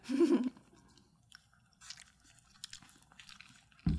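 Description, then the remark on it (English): Soft chewing of squishy, gelatinous lychee jelly from a drink, with small wet clicks and smacks over a few seconds, framed by brief louder thumps or vocal sounds at the start and end. “Wait, the lychee jelly thing is so good.”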